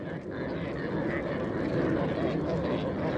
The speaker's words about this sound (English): Next are the reindeer of Lapland